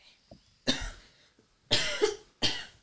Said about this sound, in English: As you get to the stairs, it's a lot more smoky, and you start coughing a little. It's hard to catch your breath.